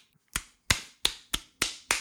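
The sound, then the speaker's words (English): A person slaps themself six times in quick succession, each slap a sharp, crisp smack with a fast decay, in a fairly steady rhythm with no talking. “I gotta slap myself.”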